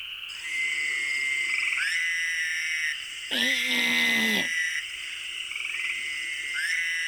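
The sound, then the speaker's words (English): A Fowler's toad gives one loud, nasal, buzzing bleat like a lamb, lasting about a second, set against a steady chorus of high-pitched trilling calls in the background. “This guy makes a bleating call like a lamb, and it's going to sound a little bit like that narrow mouth.”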